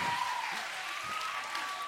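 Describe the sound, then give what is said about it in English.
An audience applauds someone saying they use Sensodyne toothpaste, a dense, steady wash of many hands clapping at once at a moderate level for about two seconds, with no voices standing out. “Don't applaud that.”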